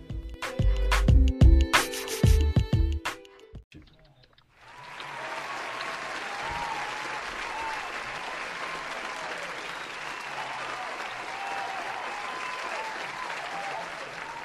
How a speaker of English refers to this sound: Thank you. Thank you. Oh, you guys are too kind. You guys are too kind. Those applause is for me